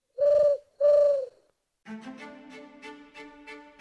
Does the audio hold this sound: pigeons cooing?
yes